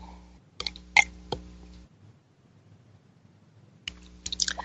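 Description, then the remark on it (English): Quiet sipping of espresso from a cup: a few short wet slurps and small clicks, separated by a stretch of near silence, with no talking. “And take a sip of my spiritual espresso.”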